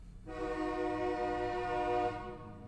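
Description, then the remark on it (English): A train horn sounds one long, steady blast lasting about two seconds, loud over a low rumble, then cuts off. No one speaks. “Here Comes the Train, a new segment called Here Comes the Train.”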